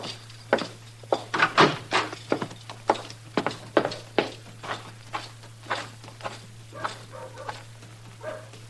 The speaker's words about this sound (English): Ellen Henry's riding up the street leading my horse.